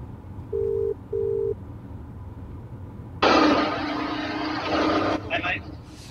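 phone call ringing tone

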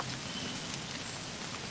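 rain falling

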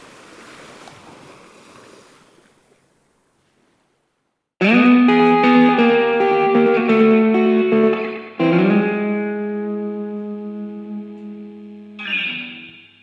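sea waves

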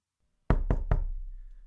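knocking on a door

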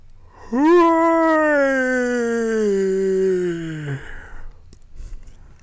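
a yawn

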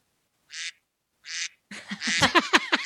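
duck quack sound effect

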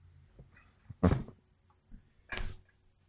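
door being closed

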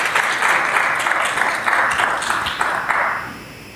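audience round of applause

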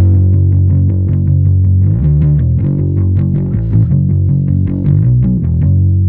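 electric guitar

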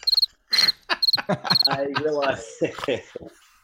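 crickets chirping sound effect

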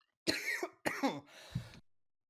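man coughing

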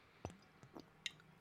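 sipping a drink

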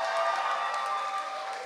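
audience round of applause

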